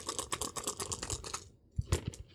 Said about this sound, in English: So 4 dice versus its e-defense. So roll 4 dice.